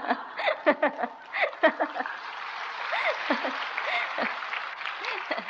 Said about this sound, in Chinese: 我讲了几分钟就有鼓掌意思而已